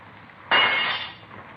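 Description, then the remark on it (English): A window's glass pane is broken to get into a room: a sudden sharp crash, one loud impact followed by a brief tinkling decay of falling shards, with no voices during the break. “I'm going to have to break this man. Well, I don't care as long as you get to him.”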